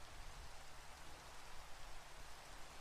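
Steady rain pours down in a dense, hissing wash with a soft low rumble beneath, constant and unbroken throughout, with no voices present.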